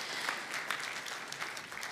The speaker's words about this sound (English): Can we just say welcome and hello just by clapping, and thank you for joining us online as well.